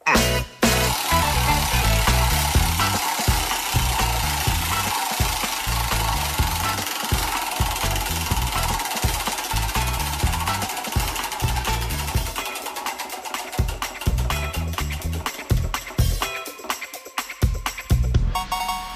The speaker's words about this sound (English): Right, I get to spin the narrator man's wheel of challenges. Here we go.